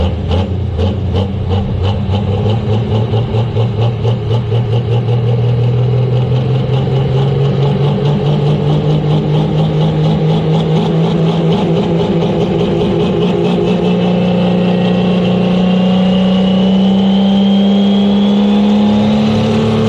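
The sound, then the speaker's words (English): The engine of a Steyr pro stock race car from Europe, called the Rednecks Pro Stock, roars loudly and continuously in on-car footage, its deep rumbling pitch climbing steadily higher as it revs up, with a harsh buzzing edge and no talking. “in Europe, and they sent me a video of their Steyr. They call it the Rednecks Pro Stock.”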